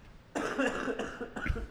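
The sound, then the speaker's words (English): A person coughs hard in a rough, sustained burst with a couple of harsh follow-up coughs, fairly loud, with no talking. “I have a coughing fit coming.”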